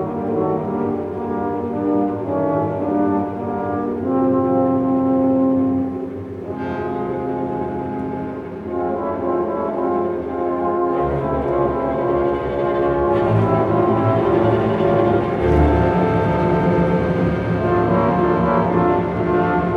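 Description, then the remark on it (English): French horns play the wolf theme from Peter and the Wolf: a dark, menacing theme in low sustained brassy notes over a full orchestral backing, loud and continuous with swelling phrases and no voices. “Yeah, let's listen to the wolf with the horns.”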